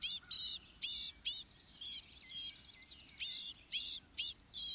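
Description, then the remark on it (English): A small bird sings a rapid, chattering warble of high, buzzy notes in short bursts with brief pauses, clear against a quiet background. “Its song is a lip-sing, chattering, incoherent warble, now faintly reminding one of the goldfinch, now of a miniature catbird, then of a tiny yellowhammer.”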